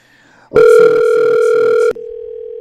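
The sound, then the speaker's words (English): A loud, steady electronic ringing tone of an outgoing phone call sounds alone, as if through a phone speaker while the call is placed. It holds for over a second, then drops to a quieter continuing tone. “Do you guys hear a ringing at all?”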